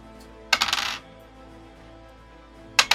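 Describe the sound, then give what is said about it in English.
Dice clatter and rattle across a hard surface in a half-second burst, then a second roll starts near the end, both with a bright, ringing echo behind them and no talking; a damage roll totalling 16. “Oh, your dice are echoing tonight. That sound.”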